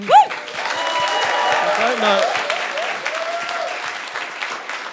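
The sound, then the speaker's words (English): An audience claps steadily for several seconds, a dense, even patter of many hands, with a few voices calling out over the applause. “Why don't I get a clap when I do the scores?”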